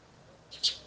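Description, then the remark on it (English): A single brief, high-pitched bird chirp in a garden rises out of faint background hiss near the end, clear, with no talking. “I'm sure you can hear the birds worshiping.”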